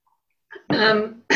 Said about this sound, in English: I'm going to just clear my throat, sorry.